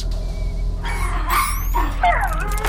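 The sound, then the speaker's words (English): High, sliding yips and whimpering whines from a Dayglo alien puppy that hatched from an egg, aboard a spacecraft in deep space, several quick squeaky calls over a low steady hum. “Can anyone speak Dayglo alien egg puppy-ish? I don't know what he wants.”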